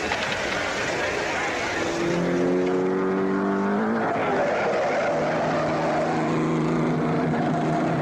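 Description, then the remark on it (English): A loud race car, number 10, roars steadily as it tries to break the day's lap record, its pitch climbing then dropping sharply as it speeds past, over a constant wash of track noise and crowd rumble. “Number 10, Borghese Independent, has just equaled today's lap record and is now trying to break it.”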